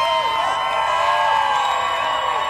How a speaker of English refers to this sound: Let's give her a cheer.